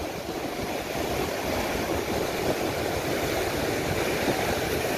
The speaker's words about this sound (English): this will give you an idea of what water does as big waves hits shallower depth